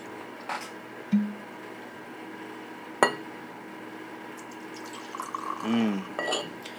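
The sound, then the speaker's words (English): Rebel Yell bourbon is poured into a glass: a sharp glassy clink, a few soft knocks, then a gurgling pour whose pitch rises as the glass fills, over faint background hiss. “So, let's get into some of this Rebel Yell. It is fairly delicious.”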